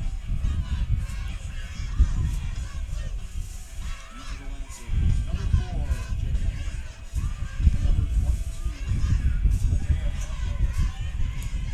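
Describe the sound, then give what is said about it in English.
Gusting wind roars across a headset microphone at a football game during a kickoff, a loud low rumble that surges and buffets in uneven waves, dipping briefly before swelling again and blowing steadily for the whole stretch. “And again, he's got the wind at his back here. And you can probably hear that going through my headsets.”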